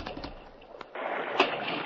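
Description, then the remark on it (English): A stallion plunging into a creek: a steady rush of water noise suddenly surges louder midway, followed by a brief, sharp splash and continued churning water. “That stallion jumped right into the creek.”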